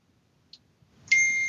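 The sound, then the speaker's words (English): A phone notification ding: a faint high blip, then a bright, steady high-pitched chime sounds out and holds to the end, with no one talking. “Ooh, let's turn my phone on silent.”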